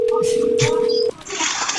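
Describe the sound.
A phone call is placed to a listener on the Adam Dunn Show: a steady, mid-pitched tone for about a second, then an abrupt cut to a hissy, open line with a thin high whine, with faint voice-like sounds underneath.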